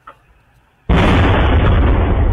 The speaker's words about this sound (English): A blast has ripped through Melbourne's northern suburbs overnight, leaving many residents startled and rushing outside to see what had happened.